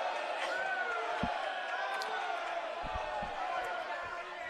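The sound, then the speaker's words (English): A few hard thuds as player number 12 slams a basketball on the court floor in frustration after a foul, cutting through a steady roar of an indoor crowd, with murmuring voices and shouts rising throughout. “Number 12 slammed the ball on the ground.”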